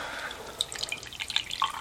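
Strong hot coffee from a full plunger press trickles and splashes into a Deadpool mug in a steady pour, with bright little drips and gurgles throughout and no talking.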